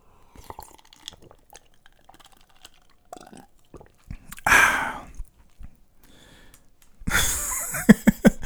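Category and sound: food or drink, sipping tea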